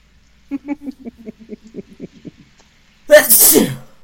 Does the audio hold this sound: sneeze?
yes